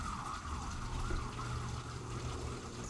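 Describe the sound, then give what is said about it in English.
A wailing emergency vehicle siren rises and falls steadily outside, muffled, over a low rumble of traffic, with no one speaking. “Hear the siren.”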